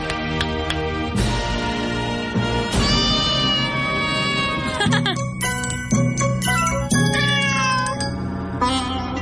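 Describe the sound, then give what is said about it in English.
A string of loud cat meows follows one after another for several seconds, some overlapping with rising and falling pitch, as if several cats are calling at once. “That's why you have cats from all countries.”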